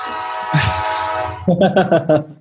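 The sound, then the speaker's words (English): A long, steady train horn blast rings out for over a second, rich and brassy, heard through an open window, then fades as a few short voice-like bursts follow. “Yeah, the guy's like sitting out there honking his horn loudly.”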